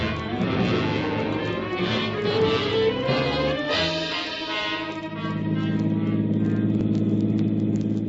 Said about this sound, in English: We rode the 6 blocks in a headquarters car, I guess it was. It took maybe 3-4 minutes,